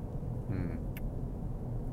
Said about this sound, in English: there must be an accident up here on the freeway where they have the, we've got 5 lanes of traffic here, and the further I'm progressing, they're closing one lane after the other. We're down to 40 kilometers an hour and 2 lanes are closed.